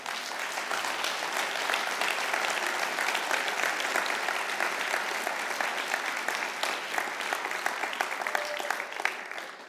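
A crowd in an auditorium gives the musicians a round of applause, clapping steadily and densely, a sustained wash of many hands at a fairly even volume that carries on for the full stretch and thins slightly near the end, with no voices.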